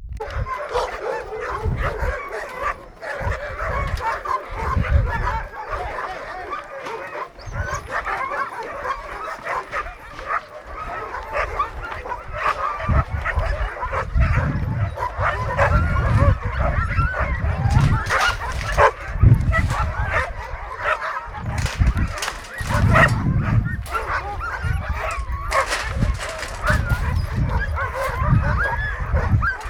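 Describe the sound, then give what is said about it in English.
A chaotic chorus of many sled dogs barking, yipping and whining at once, loud, with overlapping yaps and howls filling the whole stretch without pause. “and the cacophony of the dogs I found pretty amusing, so wanted to clue you in.”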